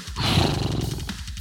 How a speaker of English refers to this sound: That's not right. That's a horse noise.